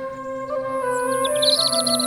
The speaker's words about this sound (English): Birds chirping. Insects buzzing. The start of summer.